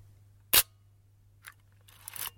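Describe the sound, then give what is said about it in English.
A camera shutter fires once at 1/125 of a second with the lens removed, a sharp, loud snap, followed by fainter mechanical clicks and a brief rustling whir, over a steady low hum. No one speaks. “I might dial it back to a 125th. I've taken the lens off as well, so you can really hear that slap.”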